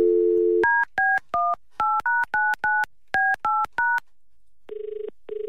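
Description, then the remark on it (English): A dial tone gives way to about ten quick, evenly spaced keypad beeps as a phone number is dialed, followed by a double-pulse ringback tone. Clear, with no voices. “She sent me a phone number. I believe it's Donna with the sexy voices phone number. Hopefully. Let's give her a call.”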